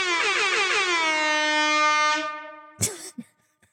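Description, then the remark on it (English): A loud, brassy air horn blares for about two seconds with a slightly wavering tone, then fades out, followed by a short sharp burst and a couple of faint clicks. “I feel like I need some special effects on this, like an air horn.”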